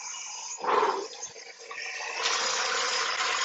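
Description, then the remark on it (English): A toilet flushes or water gushes with a loud whoosh, then settles into a steady hiss of water running, with no one speaking. “Water.”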